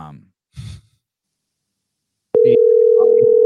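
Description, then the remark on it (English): A couple of soft breathy sighs, a pause, then a phone's dial tone cuts in abruptly as a call is placed to the speaker's wife, a loud, steady, unbroken hum that runs to the end, with faint murmuring voices beneath it. “Call my wife real quick.”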